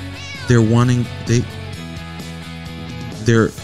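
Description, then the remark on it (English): A cat meows three times: a long, drawn-out wavering meow, a quick short one, then another near the end, over a faint steady background tone. “They're trying to sell me a voice translator app from, and you translate your cat's voice.”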